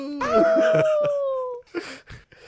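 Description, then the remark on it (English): A person imitates the wolf howl made by the Metroid speed booster with one loud, drawn-out vocal cry lasting about a second and a half, followed by a few short speech-like sounds. “In Metroid, every time you use it, does it make a god-awful wolf howling sound?”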